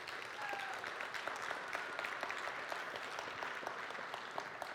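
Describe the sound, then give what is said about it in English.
A church audience applauds steadily, a dense wash of many hands clapping at an even level throughout, with a couple of brief whistles rising faintly above the claps near the start. “So this morning, go ahead and clap.”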